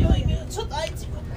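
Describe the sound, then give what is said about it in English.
Inside a bus crowded because of a protest for Iranian independence: a low engine rumble swells briefly at the start, then a steady murmur of voices and chatter fills the cabin. “It's a busy bus because there's a protest for Iranian independence.”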